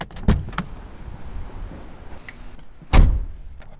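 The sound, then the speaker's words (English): A side exit door opens with a couple of sharp latch clicks, then swings shut a few seconds later with a solid thud against a quiet background hum. “Let's sneak out this side exit.”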